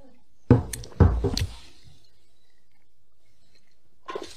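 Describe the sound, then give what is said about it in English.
A few wet gulping swallows in quick succession, followed by a pause of near silence and then a faint soft noise at the end. No one speaks. “Okay, you don't have to down it.”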